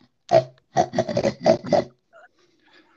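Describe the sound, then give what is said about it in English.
A voice imitates a hognose skunk with a run of six grunting, snorting bursts, pig-like and fairly loud, packed into about a second and a half, followed by faint quiet. “You sound like a pig. Oh, never mind. It's a hognose skunk.”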